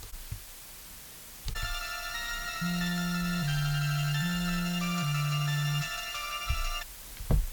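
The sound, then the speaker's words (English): A phone's ringback tone plays alone, a steady electronic trill with a stepping low melody for several seconds, followed by a click and faint shuffling at the end. “And now I'm going to go dead air till I get old puss.”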